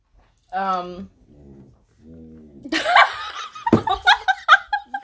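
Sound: dogs making noise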